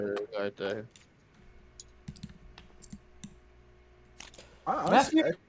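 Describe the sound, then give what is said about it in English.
Coins clink and click in a few small, scattered taps as a man fiddles with them, with a low hum underneath; the man talks briefly before and after the jingling. “I'm messing with my coins, dude.”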